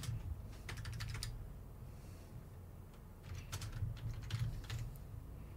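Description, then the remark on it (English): Two quick flurries of computer keyboard typing, rapid clicky keystrokes, quiet, separated by a brief pause, over a steady low background hum. “Oh, I'm trying to go zoom, zoom, and the keyboard's not working.”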